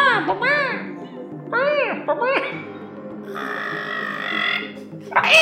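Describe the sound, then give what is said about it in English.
A young voice imitates bird calls: bursts of high, swooping chirps in quick clusters, then a sustained, wavering squeal and a final rising peep, fairly loud throughout. “just making bird noises”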